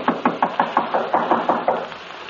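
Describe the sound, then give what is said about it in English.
A rapid series of about ten firm knocks on a door that stands ajar, evenly spaced, rapping steadily for a couple of seconds with no voices. “Standing there knocking, I suddenly realized that the door was ajar.”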